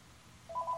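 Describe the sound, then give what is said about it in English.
An electronic phone ring starts abruptly halfway through, a steady, fairly loud two-tone beeping over faint background hum, with no one talking. “Oh, I'm getting a phone call.”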